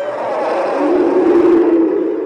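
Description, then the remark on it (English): A deep, growling Rancor monster roar, made from sounds of Ben Burtt's neighbor's wiener dog (a dachshund), that swells and holds for about two seconds with a rough, throaty rumble, loud, with no talking. “Now, the sound of a Rancor, very familiar noise.”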